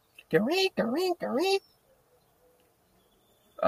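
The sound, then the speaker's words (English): A voice imitates blackbird calls with three loud, drawn-out squawking cries in quick succession, clear, followed by near silence. “Like, they just make this noise, and that's how I woke up in the mornings with like blackbirds, like just signaling to me, like there's a car coming down.”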